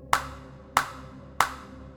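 Three loud, sharp hand claps by a man standing halfway down the steps to a basement. They come at an even, unhurried pace, each with a crisp attack and a brief ringing decay, with no voices.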